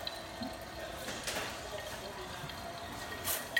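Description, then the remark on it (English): A thin, steady trickle of barrel-strength Buffalo Trace runs slowly into a glass, soft and continuous for a few seconds, with faint brighter splashes near the start and end. “It's definitely not a quick process to pour this.”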